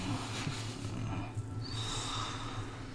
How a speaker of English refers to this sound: Oh, is he sniffing my cookie? He might be.